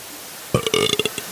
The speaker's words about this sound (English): That sounded like a burp.